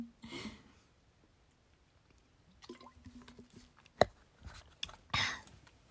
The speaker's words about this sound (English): I'm also drinking water, by the way, so if you hear that, I apologize.